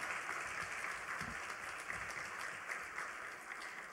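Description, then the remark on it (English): An audience at a church service applauding steadily, a dense wash of many hands clapping at once, sustained and fairly loud throughout with no voices standing out. “Give Jesus a hand clap this morning in the house of God.”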